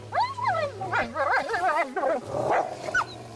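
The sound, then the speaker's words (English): A dog growls low and steady, mixed with wavering, high-pitched whines and yelps over about three seconds, with no one speaking. “Fuck that, he's growling right now.”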